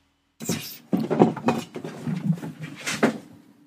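A cat making a commotion: a burst of irregular thumps, knocks and rattling clatters, loud and uneven, lasting about three seconds with no one talking.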